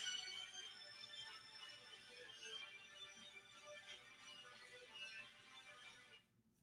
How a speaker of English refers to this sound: You got to give me like 2 seconds because I got to go to the other side of the room and grab that phone and put it on silence. I will be right back.